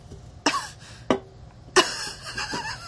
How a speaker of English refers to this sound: Oh, I'm sorry. Do you want to cough? Do you want to cough again as a reaction?